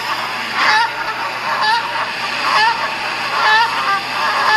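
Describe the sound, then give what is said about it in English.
Geese honk repeatedly in loud, overlapping calls, bursts recurring roughly every second over a steady background hiss, like a flock. “So coming to a prison fencing surveillance space near you soon. The geese agents.”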